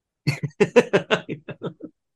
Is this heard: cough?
yes